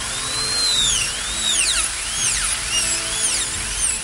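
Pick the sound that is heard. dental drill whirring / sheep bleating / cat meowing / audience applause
dental drill whirring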